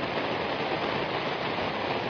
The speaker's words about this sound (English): The waves are coming in. I just wanted you guys to know what that was like.